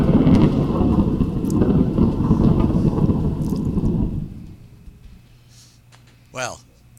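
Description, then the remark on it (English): A loud, crackling thunderclap sound effect of a lightning strike, played during a game, rumbles heavily for about four seconds, then fades away, followed by a brief swooping tone near the end. “And just like I did last game, I would also like to lightning bolt”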